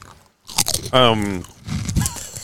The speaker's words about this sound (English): Can you hear me chewing?